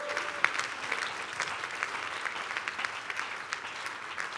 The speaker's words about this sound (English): Oh, the Christians are clapping for Jesus.